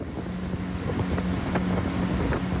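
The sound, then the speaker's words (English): A motorboat drones steadily along the immense mud-brown Sanga River, its engine hum constant, with wind buffeting and occasional splashes of water against the hull. No one speaks. “I've been back on the immense mud-brown Sanga River for about 5 hours now, give or take a few stops for local officials to check our documents.”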